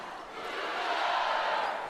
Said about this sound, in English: The crowd still enjoying some timeout shenanigans. The Cougarettes here to get the crowd cheering as they've done. The crowd has been fantastic today.